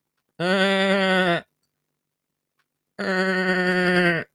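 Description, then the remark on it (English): Two long, loud bleats from a person imitating a goat, each about a second of steady, buzzy, harmonic-rich voice, separated by a pause of silence. “Keep the goat impressions going. They do make a lot of noise, don't they?”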